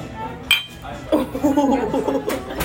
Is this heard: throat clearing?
no